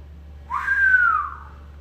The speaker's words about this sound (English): That's the whistle.